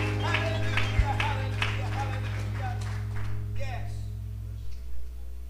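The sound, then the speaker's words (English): A church audience claps in praise of the Lord as they are being seated, a rough, scattered patter of many hands over a steady low hum and sustained organ-like tones, fading out toward the end. “Give the Lord a hand clap of praise as you're being seated this morning.”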